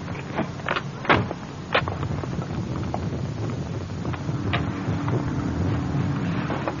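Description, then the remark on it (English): A flooded car engine cranks without catching, a steady mechanical rumble broken by irregular clicks and sputtering bursts, fairly loud, with no voices. “What's the matter with this thing, anyway? Huh. Nothing. Yeah, maybe I flooded it.”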